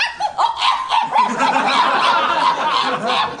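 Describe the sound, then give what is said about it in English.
A voice imitates a small dog being eaten: frantic, high-pitched yelps of terror in a dense, continuous run of loud, shrill cries, with no talking. “do an impression of a dog getting eaten. A dog being eaten.”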